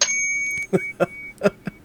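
A small bell, used as a 'rage bell', is struck once, giving a bright, high ringing tone that lingers and fades over about half a second before people start talking.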